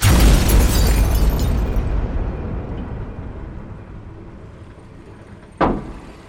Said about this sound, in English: Internal temperature reaching critical levels. Explosion imminent. Retreat to a safe distance.